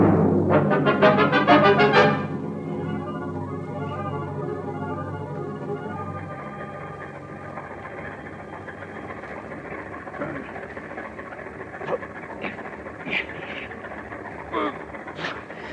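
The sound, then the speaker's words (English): A truck engine is started in a closed garage and turns over loudly for a couple of seconds, then settles into a steady, low idling rumble that drones on evenly, with a few faint clicks and knocks over it. “We just lock them in this closed garage to breathe the gas. Tonight, when it's dark, we get rid of their bodies in their car. Start the motor.”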